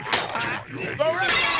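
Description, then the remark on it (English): Glass bottles break in a couple of sharp, bright crashing bursts, one near the start and a longer shattering spray at the end, with a voice speaking between them. “Quick, grab them glass bottles.”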